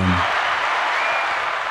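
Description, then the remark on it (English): A burst of steady applause fills the whole moment, a dense, even wash of clapping that sounds like a recorded crowd, with a brief low voice fragment right at the start. “Houston, Texas, man, round of applause.”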